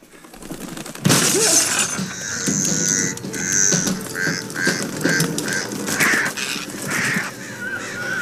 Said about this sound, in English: Always crows. There's dive bombing in the cars in the fucking house.